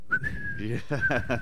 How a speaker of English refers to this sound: But you have guys that whistle it, and that's what's happening at the Devils Arena now. Somebody's whistling.